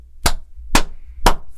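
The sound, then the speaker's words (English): Three sharp, loud hand claps in an even rhythm, about half a second apart, with a low hum underneath and no talking. “Let's do the three clap and just get into this thing.”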